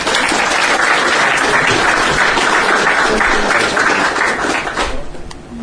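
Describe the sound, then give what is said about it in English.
An audience applauds steadily to welcome a speaker presenting a report on electric vehicles, a dense wash of clapping at even loudness that thins out slightly near the end. “now let's give him a big round of applause to come and talk to us about the EV report.”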